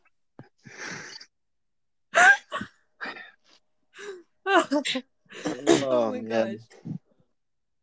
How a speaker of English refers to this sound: My gnarly cough is going to be in this. Sorry, guys, I promise I do not have COVID. Because they're going to get it from listening. That's just my cough.